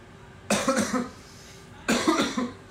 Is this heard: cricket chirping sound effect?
no